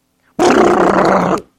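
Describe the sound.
A voice imitates highway rumble strips with a single loud, rough, buzzing drone that holds steady for about a second and then cuts off abruptly.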